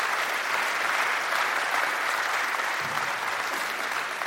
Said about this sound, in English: Well, give them a round of applause for the work they do day in and day out. Thank you, guys.